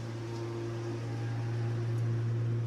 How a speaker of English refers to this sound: Pardon me, I have a mowing machine going right outside of my window.